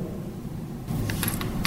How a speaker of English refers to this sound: That was my zipper.